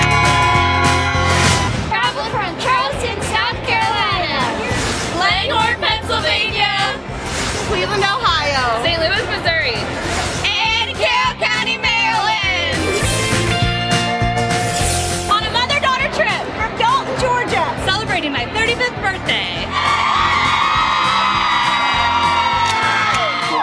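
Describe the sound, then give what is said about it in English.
A loud crowd outside a TV morning news studio cheers steadily on Friday, August 11th, 2023, with whoops, yells and rising shouts overlapping throughout. Excited voices swell in bursts without a pause, and a few high-pitched cries stand out near the end. “The crowd is ready. Lots of smiles on those faces out there.”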